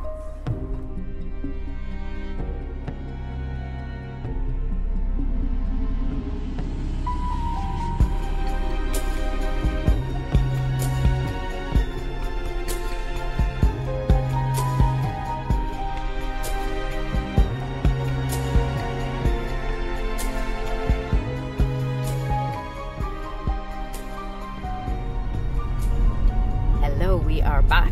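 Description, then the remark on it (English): The instrumental theme music of the TV series Severance plays: a low, throbbing pulse under sustained melodic tones, with sharp rhythmic hits joining after a brief, sparse opening and carrying steadily to the end. “You will hear either some, maybe some music from Severance.”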